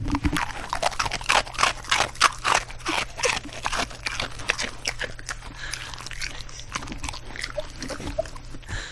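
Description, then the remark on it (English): A dog crunches and chews a crisp Biscoff cookie, with a rapid series of sharp, crackling bites and wet mouth sounds over a low steady hum, no talking. “Is that the Biscoff? That's the Biscoff.”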